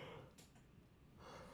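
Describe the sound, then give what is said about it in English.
A long, breathy yawn, with an airy inhale that fades in the middle and returns as a drawn-out exhale. It's fairly soft, with no talking. “Big yawn right in the middle of a sentence.”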